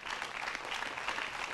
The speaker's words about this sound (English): Give God a great big hand clap of praise. Amen.